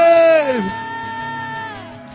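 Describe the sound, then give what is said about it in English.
A church audience gives a hand clap of praise and a shout of glory to the Lord. A loud cry of praise swoops downward in pitch, then settles into lower, steadier voices that hold on over the rest of the moment. “If you know that the Lord showed up in this place, can you give him a hand clap of praise in a shout of glory?”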